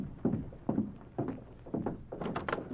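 Horse hooves galloping in uneven rhythmic clusters of hollow thuds, growing slightly louder and brighter as a rider on horseback approaches, riding hard, with no voices over them.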